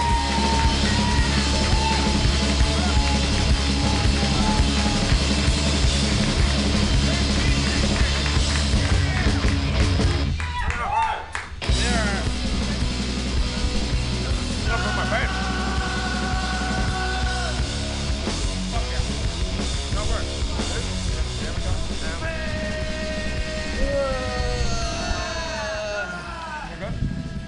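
A crowd claps and cheers for a comedy musical act in a dense, continuous roar that briefly dips midway before swelling again, with scattered whoops and shouts rising above the applause.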